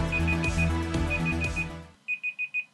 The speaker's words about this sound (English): What? Your timer went. Is that the rules now, is it? Yeah, the timer went as soon as you finished the question. I didn't start the second one.